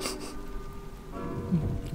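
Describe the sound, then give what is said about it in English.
Recorded rain sounds play as a background track: steady, soft rainfall hisses continuously, an even wash of patter with no voices over it. “But I didn't like the silence in the background. That's why there's rain sounds too.”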